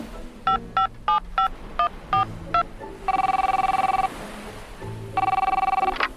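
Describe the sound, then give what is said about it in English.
A quick run of short keypad beeps, then the Whale of a Tail phone ringing with two sustained electronic trills separated by a pause, loud with no talking. “And there's the Whale of a Tail phone.”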